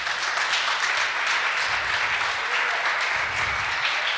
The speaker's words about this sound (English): You don't have to do anything embarrassing. You're just going to get a little gift. You guys can give them a round of applause.